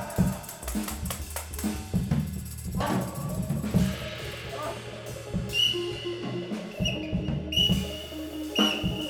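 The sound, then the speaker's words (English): Several shrill, high-pitched whistle blasts sound in the second half, each held briefly, over a steady bed of murmuring and low rumbling background noise. “You hear the whistle? That gets your attention.”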